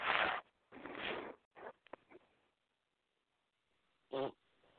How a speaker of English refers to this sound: Damn cat. I love my cat to death, folks, but you know.